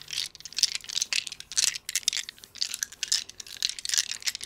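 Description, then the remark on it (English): Dice rattle and spill out of a bag, with a dense, continuous clatter of small hard pieces knocking together, rising and falling in bursts for a few seconds without any voices. “Or dice out of a bag.”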